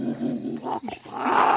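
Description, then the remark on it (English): A big cat growls, a low rumbling snarl that briefly dips then swells louder and harsher toward the end, with no one speaking. “You said you patted this beast.”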